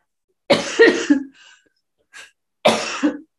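A loud cough in two harsh bursts around half a second apart, a brief quiet wheezy breath between them, then another strong cough a moment later. No talking.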